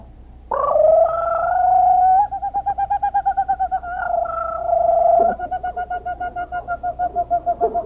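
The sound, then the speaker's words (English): A man's voice does a loud impression of a kookaburra bird's call: long hooting whoops broken by rapid, rhythmic pulsing bursts like a cackling laugh, lasting several seconds without any words. “he sings out like a kookaburra.”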